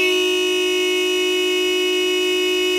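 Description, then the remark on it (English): A car alarm at a campsite blares a loud, steady electronic tone with a buzzy, harmonic-rich pitch, holding unbroken without pauses for the whole clip. No voices are heard. “Dad ripped some wires from the engine and the beeping finally stopped.”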